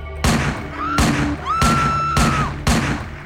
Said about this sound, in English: soon after Tournay entered Estermann's apartment, multiple gunshots rang out